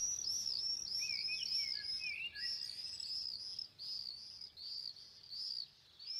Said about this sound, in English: Friends send me birdsong recordings from London and elsewhere. They are singing louder under lockdown.